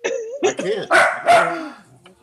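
A dog barks, a quick run of four or five loud, yelping barks with a whiny edge, the last ones drawn out before it falls quiet.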